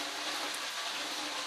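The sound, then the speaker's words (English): A steady, even hiss of rain falling in the background, soft and continuous with no breaks, like a light shower, with nothing else standing out. “Like I see, you guys hear the rain in the background. It sounds beautiful.”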